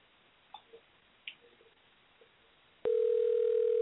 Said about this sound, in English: Okay, I give up on him. Okay, here we go. he's not answering the phone. How come nobody answers?